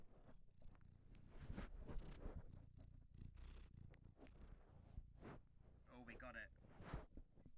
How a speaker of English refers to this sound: The reason I can't talk very well is because I do have a cat that is still just walking around. Do you want to hear? Try and hear the purring again.